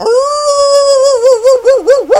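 A dog lets out one long howling whine, starting as a steady high tone and breaking into a wavering, warbling pitch toward the end. No voices are heard.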